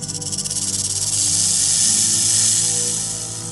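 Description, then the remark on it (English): A rattlesnake in Big Bend National Park buzzes its tail in a loud, dry, continuous hiss, pulsing quickly at first and then settling into a steady whir before easing slightly at the end, unaccompanied by voices. “And of course, that includes rattlesnakes.”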